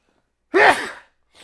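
A man sneezes once: a sudden, forceful burst that trails off within half a second, followed by a brief, faint breath.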